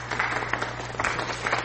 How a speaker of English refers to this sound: I'm gonna put the picture up, but I also have to give the golf clap to the person. Team white skin! Yeah, only one person got this right, and you deserve a golf clap, okay?